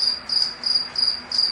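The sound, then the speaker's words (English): A cricket chirps steadily in short, evenly spaced bursts, about four trills in quick succession, clear with no voices present. “As we begin to slow down, just like the cricket, we begin to chirp, chirp, chirp.”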